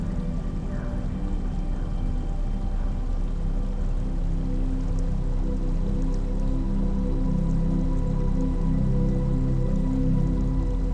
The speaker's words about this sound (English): The trickles of running water play in the background, like the notes of your favorite song. Let the melody of the water